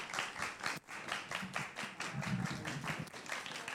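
people clapping

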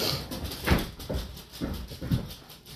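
dog whimpering

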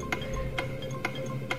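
ticking countdown clock

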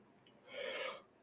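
yawn

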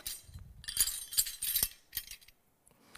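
bunch of keys jangling

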